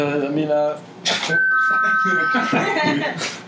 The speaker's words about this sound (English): I just accidentally leaned on the keyboard. Very reminiscent of Rocket State. Yeah, it sounded like a doorbell.